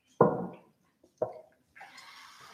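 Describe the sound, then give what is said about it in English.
Sips of water: two quick wet gulps, each fading fast, followed by a brief, soft rush of liquid. No one is talking. “Do you guys want a sip of water?”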